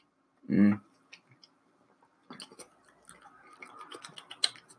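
A sip of Hop Hazard Double IPA beer: one brief slurp, a pause, then a steady run of wet lip smacks and small mouth clicks as it's tasted for its aftertaste, with no talking.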